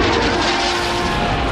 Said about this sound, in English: Planes rocketing overhead, red, white, and blue.